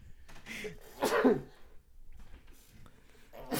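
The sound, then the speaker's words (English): A single forceful sneeze bursts out after a brief inhale, sharp and loud, followed by quiet breathing and faint shuffling. “I had to sneeze.”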